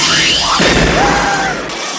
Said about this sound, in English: I think they use like actual fireworks to burn this witch, or to like symbolize the burning of the witch.